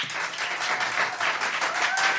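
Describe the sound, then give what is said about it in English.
A crowd applauds to vote on which team, Disney Princesses or Toy Story, should get the points, a dense patter of many hands clapping at once, fairly loud and sustained with no pause, a few louder bursts rising through the wash of sound. “All right, so please applaud for who you think should get the points.”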